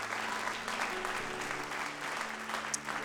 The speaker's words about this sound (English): You need to clap your hands for an ancestral blessing. A multiplied, compounded anointing.